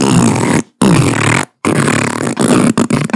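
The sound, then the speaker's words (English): A voice blows loud, sputtering raspberry fart noises, several long buzzy bursts broken by short pauses, the last ones choppier and more broken up. “Which isn't surprising to you because all you saw him do is fart.”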